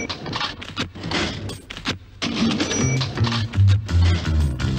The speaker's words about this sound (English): Ground floor perfumery station. Which obviously has a cash till, yeah, just the noise involved in it.